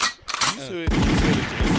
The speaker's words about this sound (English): I think let's do gunshots.